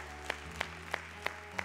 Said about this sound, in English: Let's give the Lord a hand clap of praise today.